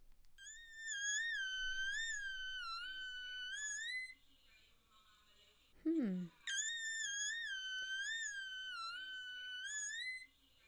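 A singer holds very high, piercing whistle-register notes in two long stretches, the pitch wavering and sliding upward, broken by a pause and a brief lower swooping vocal sound.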